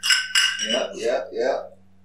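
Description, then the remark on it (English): Glasses clink together in a toast: two bright, ringing taps in quick succession, their high tones lingering. Then low voices murmur briefly before the sound fades out. “Toast, man.”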